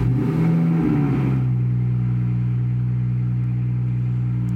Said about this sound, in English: Somebody just started the engine of the loudest fucking car on the planet, I guess, outside of my window.